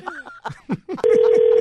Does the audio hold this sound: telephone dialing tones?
yes